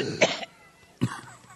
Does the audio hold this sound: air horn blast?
no